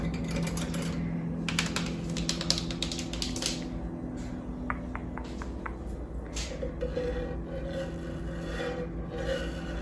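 Crisp fingernail taps on hard household surfaces in the kitchen of a new apartment, coming in quick bursts and short rhythmic runs over a steady low hum from the fridge. No one speaks.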